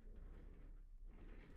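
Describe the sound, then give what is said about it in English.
A low, steady rumble of a new office chair's casters rolling across a floor, continuous for a second or two with a slight gritty texture, fairly quiet, with no talking. “I'm sorry there wasn't a video yesterday, but you see, I got a new chair, and this one can roll.”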